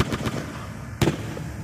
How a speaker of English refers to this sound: Gunshots ripped through the backs of unarmed protesters as they fled. The Sharpeville Massacre, as the March 21st, 1960 murders are now known, left 69 people dead and hundreds more injured.